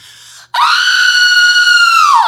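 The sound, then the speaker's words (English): A voice imitates a wild, high-pitched yelp: one loud, sustained shriek that holds steady for nearly two seconds, then drops off, preceded by a brief softer breathy sound. “And you yelled out this yelp that I've never heard before.”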